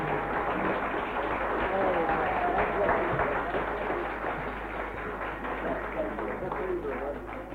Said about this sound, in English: Please give them both a clap, will you? Bless you.